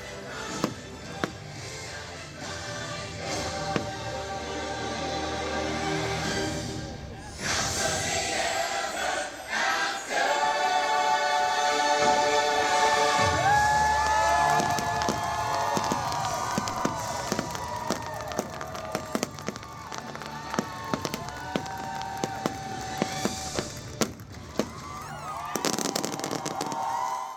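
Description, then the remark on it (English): The finale of the Happily Ever After fireworks show at the cast member preview of its return performance: sharp booms and crackling bursts pop repeatedly over swelling, sustained show music, growing denser toward the end, with a faint crowd murmur underneath. “And this is what the finale sounded like at the cast member preview of the return performance of Happily Ever After.”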